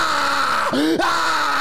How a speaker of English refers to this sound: I was gaining on her and she would not stop screaming.